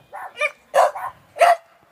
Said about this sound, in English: Those are dogs. No, that's not a human. No, those are actual dogs.